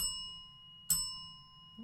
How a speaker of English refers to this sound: Hit two bells, please.